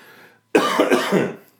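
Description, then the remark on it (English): A single harsh cough from a person who has had pneumonia, lasting about a second, rough and throaty with a few choppy bursts, following a brief quiet pause with no talking. “I'm going to try to take out all my coughs.”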